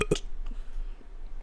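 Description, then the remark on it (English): A short, loud burp right up close to the microphone, one abrupt throaty burst followed by quiet room noise. “You burped into the mic.”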